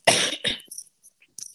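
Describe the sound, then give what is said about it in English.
A harsh cough bursts out twice in quick succession, the first longer and stronger, followed by a faint breathy rasp and a brief hiss. No talking. “I need to cough.”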